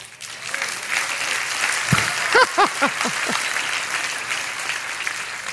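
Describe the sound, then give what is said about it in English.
A large crowd claps steadily throughout in answer to the question of who is up for an adventure, a dense, even wash of applause, with a few short rising whoops and cheers bursting out partway through. “Okay, there's about 500 of you that did not clap.”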